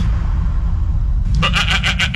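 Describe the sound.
A low, steady rumble fills the start, then DJ Khaled, surrounded by goats while doing goat yoga, lets out a loud, wavering goat-like bleat, its quivering pulses repeating rapidly for under a second at a fairly high pitch.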